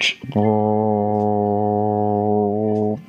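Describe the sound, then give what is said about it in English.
A person imitates an old microwave, a big, thick black box on a counter, with a steady, low, buzzing hum held for about two and a half seconds, loud and unchanging in pitch, with a brief breath before it. “It's like that humming noise. It's like, like it's something like, it sounds like a fucking animal crouching on the counter growling at you for like 3 minutes straight.”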